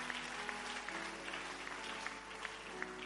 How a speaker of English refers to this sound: Increase that clap offering, please. Celebrate.